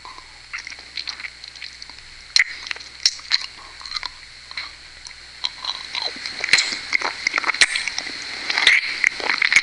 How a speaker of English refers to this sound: I like sucking your balls. I like you. You like the sucking noise?